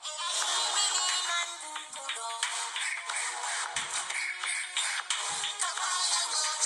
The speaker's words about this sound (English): So much so that the BET animated series intro is my ringtone.